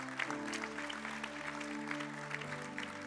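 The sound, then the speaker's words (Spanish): An audience claps steadily for about three seconds, a dense, continuous patter of many hands, while sustained low keyboard or organ chords hold underneath. “Damos ese aplauso fuerte.”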